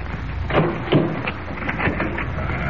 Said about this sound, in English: Just a minute. Taking an awfully long time to open that door.